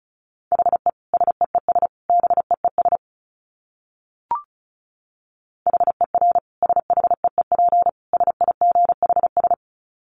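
Fast Morse code at about 35 words per minute, a steady mid-pitched tone keyed in rapid dots and dashes. It plays in two runs separated by a short silence broken by a single click.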